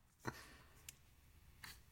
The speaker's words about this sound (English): You hear that clicking sound, right?